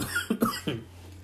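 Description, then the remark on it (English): A quick burst of three harsh coughs in close succession, fairly loud, with a low steady hum underneath and no talking. “I started to have like, not like a choke, like I'm in distress, I need immediate help choke, but it was one of those where you're going to have an embarrassingly loud coughing fit.”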